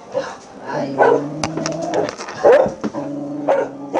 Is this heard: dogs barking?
yes